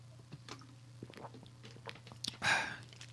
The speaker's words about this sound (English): Excuse me while I take a sip of this water.